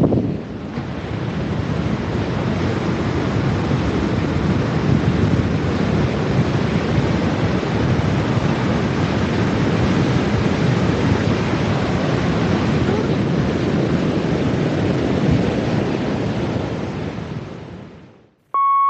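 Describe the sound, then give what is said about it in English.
Steady roar of sea waves washing onto the shore at Whitley Bay, mixed with gusty wind buffeting the microphone in windy, rainy weather, continuous and fairly loud for the whole stretch with no voices. “So I'm going to leave you the noise, hopefully of the sea, but it might just be a little bit of wind.”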